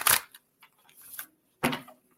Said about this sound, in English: Okay. So here we go. I'm going to shuffle these cards.